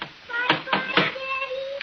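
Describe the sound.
Three quick, evenly spaced knocks on a door, fairly loud and sharp, with faint voices murmuring underneath and continuing after the knocking stops.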